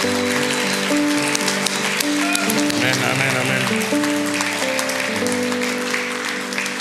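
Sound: audience applauding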